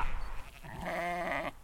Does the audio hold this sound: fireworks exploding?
no